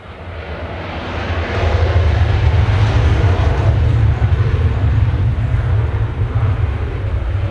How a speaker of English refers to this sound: Well, yeah, just as we hear one of our 77 Squadron Hornets just take off now, and another one. I think there'll probably be another two after that, but we'll wait.